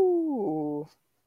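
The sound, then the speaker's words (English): A single short dog howl, fairly loud, sliding downward in pitch for under a second before cutting off, with a faint brief sound trailing after a pause. “So the next one on the list is the howl.”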